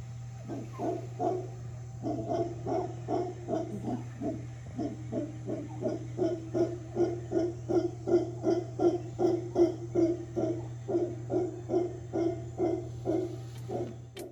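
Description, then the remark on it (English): A long series of deep, rhythmic guttural roars from howler monkeys howling at pouring rain repeats steadily, pulsing about twice per second over a constant low hum with faint background chatter. “We saw spider monkeys grooming, howler monkeys howling at the pouring rain, and capuchins hastily moving through the canopy.”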